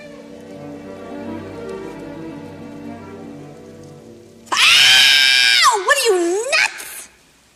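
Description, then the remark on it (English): Meryl Streep lets out a loud, piercing scream that wails and wavers for a couple of seconds after her finger is pricked by Madame Liesel, breaking in abruptly after a quieter stretch of low, steady background sound. “It's one of my favorite Meryl Streep screams.”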